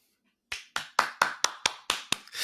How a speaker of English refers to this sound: Applause.